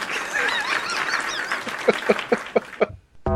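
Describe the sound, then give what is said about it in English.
A turkey gobbles loudly, a dense warbling chatter that breaks into a quick string of sharp, throaty pulses before cutting off abruptly. “It's a turkey.”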